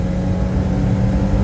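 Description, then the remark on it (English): A car engine drones loudly and steadily as the driver passes another car, a low rumbling hum that holds even throughout the brief stretch without a clear rise in revs. “Give me a second, I have to pass this fucking car right quick.”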